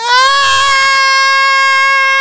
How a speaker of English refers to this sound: The biggest one just starts screaming. She just starts making a noise.